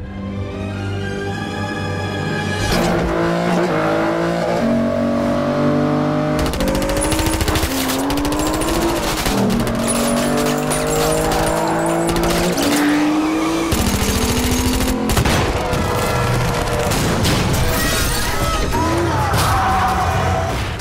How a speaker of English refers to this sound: So I don't have these in any particular order, but I have my three favorite car chases from any James Bond movie, and one of them is Quantum of Solace.